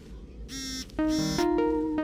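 A phone rings with an electronic ringtone for an incoming video call: a few bright, steady tones stepping through a short melody, fairly loud, with no one speaking.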